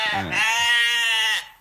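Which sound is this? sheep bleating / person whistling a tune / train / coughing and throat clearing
sheep bleating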